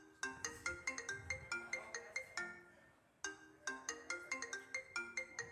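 A phone ringtone plays a bright, repeating melodic phrase of quick tonal notes, pausing briefly before starting the pattern again, clear with no voices.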